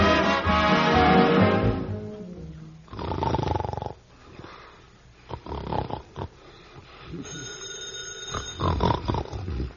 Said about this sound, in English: the telephone is ringing. Who set the clock for this time of night? That isn't the clock. That's the telephone. Go answer it.